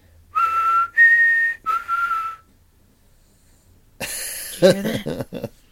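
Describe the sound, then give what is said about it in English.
Three clear whistled notes in a low, high, low pattern, each held about half a second, presented as the whistle of a Kustika from folklore, followed by a burst of rustling, clattering noise. “You can identify them by their low, high, low whistle sound that they make.”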